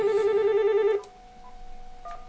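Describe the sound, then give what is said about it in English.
A loud, warbling telephone ring sounds for about a second as a call rings back, then cuts off abruptly as the line hangs up, followed by a quiet line hiss and a couple of faint, short electronic tones. “Apparently it is ringing back, and it hung up on us.”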